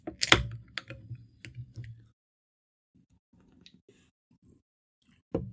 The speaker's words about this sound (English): And right now I've got a bubbly, sparkling water, cherry flavored. These are really damn good, so I'm going to go ahead and crack that.